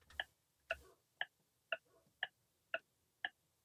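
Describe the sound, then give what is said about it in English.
A quiz countdown clock ticking in a steady rhythm, seven crisp ticks about half a second apart, clear with nothing else behind them; 15 seconds given to answer a quiz question on who wrote the horror novel Frankenstein. “15 seconds on the clock.”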